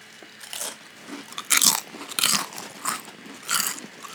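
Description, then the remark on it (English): Loud crunching of crisp taco-flavored chips that look like Doritos being bitten and chewed, a series of sharp brittle bursts repeating every half second or so, with no talking. “Nice crunch.”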